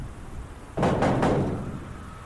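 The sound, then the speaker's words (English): Three heavy, rapid bangs on a door, loud, like a fist pounding hard. The thuds come in a quick burst with no talking, then a faint hum lingers. “Open the damn door!”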